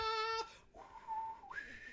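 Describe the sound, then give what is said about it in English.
A person whistles a brief, wavering tune of a few sustained notes, gliding upward to a higher pitch at the end, fairly loud with no talking. “No, man, the whistle was crap.”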